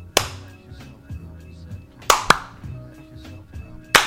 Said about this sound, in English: Slow clap.